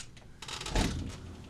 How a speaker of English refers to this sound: knocking on the door.